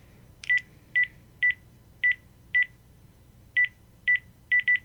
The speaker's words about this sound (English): What the hell? It's a house phone. Hold on. God, there's so many options here. Ringer settings, select. Okay, they're off.